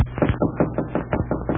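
Rapid knocking on a door, a quick run of about eight firm, hollow raps at an even pace, with no voices.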